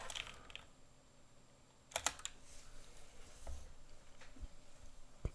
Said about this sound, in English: hold on 1 second, I've got to check something. You can hear me clicking away on my keyboard.